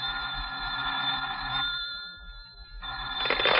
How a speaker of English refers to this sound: You're still slouched there half an hour later when the telephone rings.